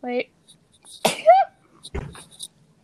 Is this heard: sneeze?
yes